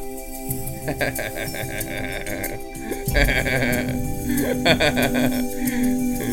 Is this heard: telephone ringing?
no